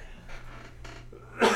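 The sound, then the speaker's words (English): Someone coughs, with a couple of soft, breathy bursts followed by one louder, harsher cough at the end, heard alone without talk. “Excuse my Corona cough.”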